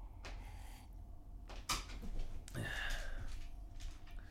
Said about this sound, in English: Cat's trying to open the door